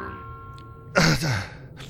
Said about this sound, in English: Batman's skull is in a vice grip, sweating, gasping, grinding his teeth in a death grimace. He's not going to give in to Max, not going to scream again.